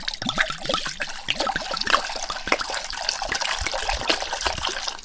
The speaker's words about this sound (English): So we're gonna go pour this into a pot